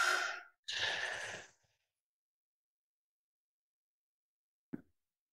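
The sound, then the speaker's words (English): A breathy inhale followed by a longer, airy exhale like a sigh, part of a slow cooling and calming breathing exercise, then quiet with a faint brief tap near the end. No one speaks. “Make the exhalation even longer because we're trying to cool and calm.”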